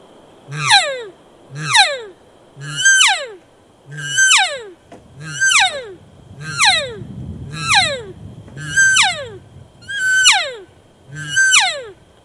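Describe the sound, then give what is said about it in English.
A high, echoey hunting call repeats about ten times at a steady pace of roughly one per second, each loud, ringing note sliding downward in pitch, with no talking. “I can push it just into that higher tone to give it that real high echoey sound.”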